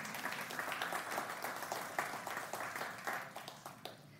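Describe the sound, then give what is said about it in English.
An audience breaks into applause, a dense, steady patter of many hands clapping at once, sustained at an even level for several seconds with no voices over it. “And yeah, you can clap for that one.”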